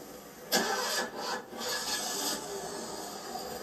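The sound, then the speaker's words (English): A car engine is being cranked: a harsh, grinding starter rasp in a few uneven bursts that runs on steadily, fairly loud, with no voices. “Can't even operate the car properly.”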